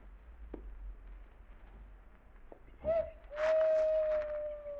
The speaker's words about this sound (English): I'm just listening. Did you hear that owl? Yeah. Remember hearing it a ways back?